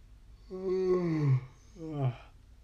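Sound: a person yawning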